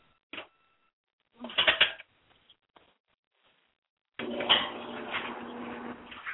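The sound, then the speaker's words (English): The last load of laundry is loaded into a clothes dryer: a single clunk, a short burst of thumps and rustling, a few faint taps, then a steady mechanical rumble and hum as the dryer starts running. “Sorry, I had to put the last load of laundry into the dryer.”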